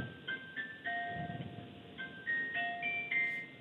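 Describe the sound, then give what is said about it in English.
A hospital chime announcing a baby's birth plays a short electronic melody of clear, bright tones stepping up and down in pitch, repeating its phrase over a low background rumble, with no one speaking. “I'm gonna wait for that chime to go down.”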